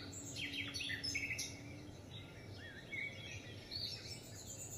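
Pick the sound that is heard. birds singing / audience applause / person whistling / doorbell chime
birds singing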